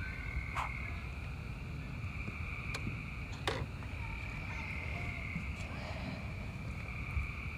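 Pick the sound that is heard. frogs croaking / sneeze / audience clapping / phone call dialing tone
frogs croaking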